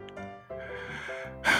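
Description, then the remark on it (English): Loud, rough snoring of a disheveled man asleep with his face on a wooden bar top: a long droning inhale-like rasp with a buzzing low pitch, ending in a sharp, noisy snort. No talking accompanies it. “and a man with an impressive handlebar mustache restocks glasses behind the bar while trying not to disturb a disheveled gentleman who snores loudly into the wood grain of the bar top.”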